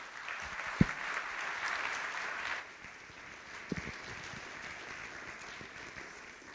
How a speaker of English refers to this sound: Would you go ahead and give him a hand as he comes up?